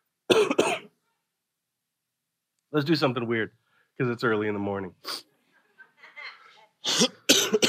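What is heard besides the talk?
coughing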